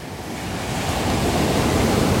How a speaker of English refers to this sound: Still a nice sunset. Bowie's tripping out with the ocean. Doesn't know what to think. Huh, Bowie?